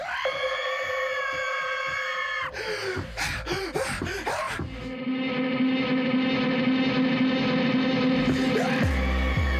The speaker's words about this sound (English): Does anybody else actually sing along with the screaming when they listen to …